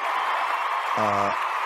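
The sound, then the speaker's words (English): A person applauds themself: steady, dense applause runs the whole short stretch at an even level, with a brief low voiced tone, like a hum or cheer, rising from it near the end. “This is our, hold on, we need some, I'm going to like applaud myself.”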